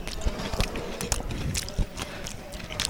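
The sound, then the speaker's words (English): Repeated crisp crunching from someone eating a fresh cucumber dish with herbs in one mouthful, with irregular bites and soft mouth sounds, up near the microphone. “You're going to have to explain the taste because I was too busy crunching it for the microphone.”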